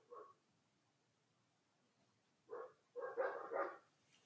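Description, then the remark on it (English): Dogs bark in the background at home: one short bark, a long quiet gap, then another bark followed by a quick cluster of overlapping barks. They sound fairly faint, and no one is talking. “We are recording at home and our dogs tend to bark in the background.”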